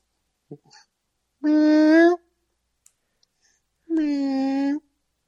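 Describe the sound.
A person imitates a hungry cat's meow twice: two drawn-out, nasal vocal calls separated by a short pause, fairly loud, with a few faint clicks before the first.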